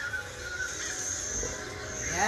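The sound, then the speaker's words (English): Harsh, raspy crow caws ring out over a steady outdoor background, with a louder rising call near the end; no one speaks. “Yes. It's crows.”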